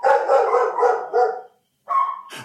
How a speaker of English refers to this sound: A neighbor of ours just came in, and our dogs don't like that.